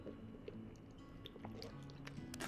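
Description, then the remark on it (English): Quiet sipping of tea, a mix of sweet tea and sweet chai tea: soft wet mouth sounds and small liquid slurps scattered over a few seconds, with a faint low hum in the background and no talking. “I'm gonna get a sip of tea.”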